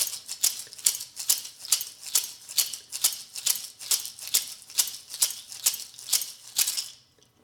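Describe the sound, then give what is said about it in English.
Two homemade gourd rattles filled with gourd seeds, their holes sealed with glued-in corks, are shaken in a steady rhythm, about sixteen bright, crisp bursts of rattling that keep an even pace before stopping abruptly. No one speaks. “Then shake it up, both of them.”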